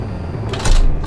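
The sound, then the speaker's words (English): A brief electric whir as an office's doors lock and windows dim on a spoken command, a steady mechanical hum that swells into a louder buzzing rush near the end, with no voices. “Office, dim windows and locked doors.”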